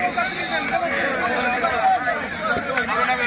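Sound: crowd chatter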